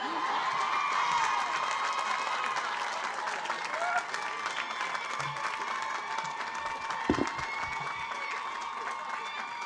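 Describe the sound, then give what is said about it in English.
A crowd at the Wellesley class of 1996 commencement applauds and cheers steadily for commencement speaker Nora Ephron, a dense wash of clapping with whoops and shouts layered on top, holding at a loud, even level throughout with no single speaker emerging. “The sooner you stop cheering, the sooner I can start speaking, the sooner it will be over and we'll be dry.”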